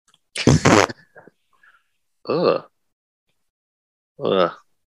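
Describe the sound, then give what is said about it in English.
A loud, sputtering fart bursts out for about half a second, followed by a pause and then two short voiced vocal sounds spaced a couple of seconds apart. “That was my ass. Sorry. Oh, that's disgusting. Sorry. I farted.”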